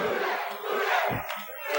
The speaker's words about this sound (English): Oh, the crowd saying, who that? Who that?